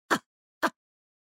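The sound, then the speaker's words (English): Two quick, stifled sneezes about half a second apart, each a short sharp burst of breathy noise with a slight voiced edge, and nothing else around them. “Yeah, God bless you,”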